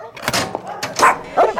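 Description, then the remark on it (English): Dogs in a dog room barking in a quick flurry of sharp, overlapping barks and yips, loud, with short bursts spaced a fraction of a second apart. “Let's start in the dog room.”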